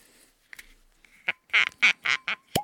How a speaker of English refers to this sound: There you go. That's no sound effects. That's the real shit. It sounds like I'm pouring a lot, but really it's probably about 1 ounce.